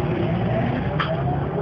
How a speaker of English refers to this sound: Well, here I am back on the bus.